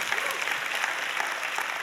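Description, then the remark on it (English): A crowd of people filling a hall after Chinese New Year applauds as a clap offering, with steady, dense clapping that holds at an even loudness for about two seconds, with no voices standing out above it. “Come on, let's give our clap offering.”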